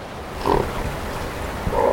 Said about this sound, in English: On nearby rocks, harbor seals, looking like huge taut sausages, have hauled out to rest. If we're lucky today, we'll hear some snorting.